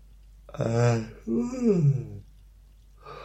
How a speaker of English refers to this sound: I'll stop yawning in a minute.